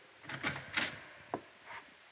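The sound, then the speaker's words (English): A few soft taps on a jail door, then a sharp latch click and a faint scrape as the jail matron opens it, quiet with no voices. “I tapped on the door, and the jail matron let me in.”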